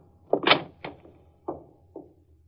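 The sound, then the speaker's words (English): The office door of attorney Edgar Clemson is pushed open abruptly as a man barges in, a loud rattling clunk followed by three shorter knocks and thuds as it swings and settles, with no one speaking. “I got in through the door.”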